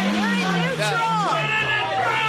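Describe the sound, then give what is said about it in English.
A car engine strains and drones at a low, steady pitch as the car backs up and is shifted through gears with difficulty, with several voices chattering loudly over it throughout. “He's changing gears. It sounds like he's having trouble.”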